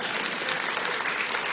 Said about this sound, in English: Now you can clap.